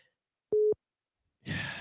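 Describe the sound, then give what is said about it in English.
A phone rings for an incoming call with a single short, steady electronic tone against silence, followed a moment later by a loud breathy exhale into the microphone. “No, I'm not answering the fucking phone. I'm not answering the call.”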